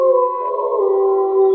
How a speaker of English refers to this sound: You get no direct response, but from somewhere a lot closer to you in the woods, you get another one of those howls.